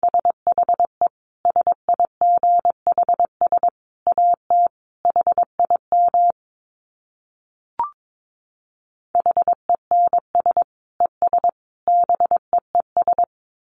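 Morse code sent at 22 words per minute: a steady mid-pitched tone keyed in quick dits and longer dahs, grouped into characters, with a gap and a single soft click partway through.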